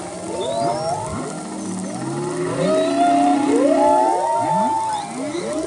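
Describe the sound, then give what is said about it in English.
Humpback whale song off Hawaii during the breeding season: overlapping long, sliding moans and rising-falling whoops, with several singers layered together in a continuous, echoing underwater chorus, no speech. “And humpback whale song, it has some important function for their breeding.”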